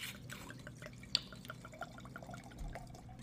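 Sand-colored wine pours into a glass, a steady trickling, gurgling stream with a brief bright clink near the start, no voices.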